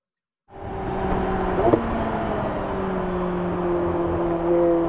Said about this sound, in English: That was a fast downshift. That's got to be a paddle shift gearbox. Yeah. Which was every single car bar the Morgan, actually. Yeah, that narrows it down. There's a bit of turbocharged rush in there I'm detecting.